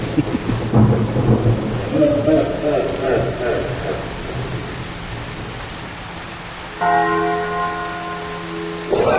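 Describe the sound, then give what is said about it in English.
A Halloween thunder-and-rain sound effect played by a voice assistant: steady, loud rain hisses throughout while deep thunder rumbles in the first few seconds, and near the end a sustained, ringing bell-like tone sounds over the downpour. “Is it rain as in R-A-I-N of terror?”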